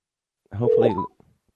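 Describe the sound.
A brief burst of telephone dialing tones as a call is placed, lasting about half a second, fairly loud, with steady pitched beeps blended over a voice-like hum, then quiet.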